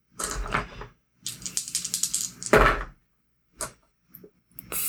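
Dice are rolled in a tabletop game, clattering and rattling across a hard surface in several quick bursts of clicking, a longer tumbling roll, then a few short scattered knocks as they settle, fairly loud.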